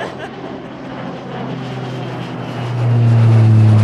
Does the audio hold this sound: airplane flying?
yes